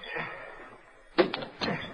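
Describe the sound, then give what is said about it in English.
A restaurant door in Cedar Gap opens and swings shut as Tonto comes through it in mid-afternoon, with a sharp clunk followed by a second thud a moment later over a soft, hissy background. “It was mid-afternoon, and the restaurant was deserted when Tonto came through the door.”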